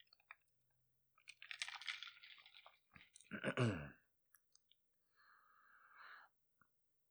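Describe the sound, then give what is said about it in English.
A quiet sip of a drink: a brief slurp, a gulp, a couple of tiny clicks, then a soft breathy exhale. No one speaks. “So, quick little sip and we'll get right into it.”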